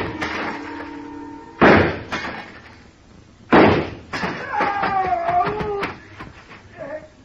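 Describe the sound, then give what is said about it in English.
Two loud, sharp gunshots ring out about two seconds apart, each a sudden blast, fired at a glass showcase in a store, followed by bright ringing and tinkling as the showcase shatters and settles. “I started deliberately shooting his foothold out from under him.”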